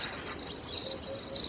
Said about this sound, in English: All right, that's a terrible cricket sound effect. Hey, it was. It was like a stuttering cricket.